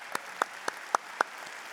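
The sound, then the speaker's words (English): A handful of sharp, evenly spaced hand claps at Wheaton Bible repeat in a steady rhythm, about four per second, fairly quiet, with no voices over them. “How about give me a round of applause here?”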